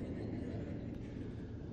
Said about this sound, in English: If not, listen carefully above the sound of that big airplane.